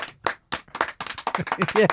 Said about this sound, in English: Can we get a studio applause? Yay.